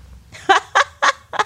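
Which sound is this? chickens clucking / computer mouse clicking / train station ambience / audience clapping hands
chickens clucking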